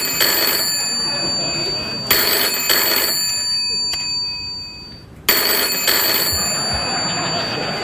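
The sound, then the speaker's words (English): A telephone rings loudly, its bright metallic bell sounding in repeated double bursts separated by a short pause, with no one speaking. “I wish other late-night talk show hosts that weren't working today because it's Memorial Day would phone me or something.”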